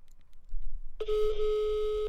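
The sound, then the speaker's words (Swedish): A steady electronic ringback tone sounds for about a second as an outgoing phone call to a mother rings, a single sustained beep over faint low background noise. “Nu ringer vi upp henne för jag har en följdfråga.”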